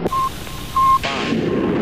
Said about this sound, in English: All three engines up and burning. 3, 2, 1, 0, 0, and liftoff.